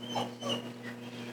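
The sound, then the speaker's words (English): A dog whimpers twice in quick, short, high-pitched whines, fairly faint, over a steady low electrical hum with no talking. “I'm going to go over and see that dog.”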